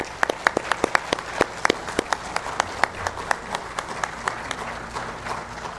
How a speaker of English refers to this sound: If you would, let's show our approval of these shepherds with a round of applause, please.